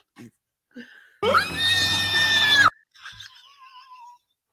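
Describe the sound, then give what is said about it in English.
A loud, shrill human squeal lasting about a second and a half, strained and pig-like, followed by softer high-pitched whining sounds, with brief faint noises just before it. “It sounds so much like a pig squeal.”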